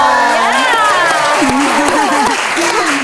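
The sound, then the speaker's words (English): A live audience applauds and cheers loudly and continuously, dense clapping with excited shouts and voices rising over it throughout. “Clap for them.”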